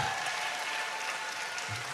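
An audience of many people applauding steadily, a dense, even wash of many hands clapping at once, sustained throughout without pause.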